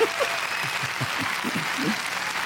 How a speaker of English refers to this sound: Very good applause. It is.